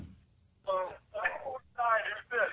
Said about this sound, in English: Hello? Yeah, can you turn down your radio?